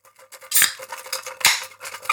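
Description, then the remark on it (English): Ice cubes rattle and clatter inside a water bottle being shaken, with two loud bright bursts of clinking amid a steady jangle of smaller knocks, no voices. “Well, you'll have to like shake your water bottle or something.”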